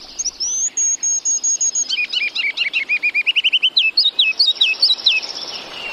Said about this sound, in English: all the birds singing so joyfully in today's Bird Note